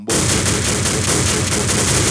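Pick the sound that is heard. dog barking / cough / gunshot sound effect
gunshot sound effect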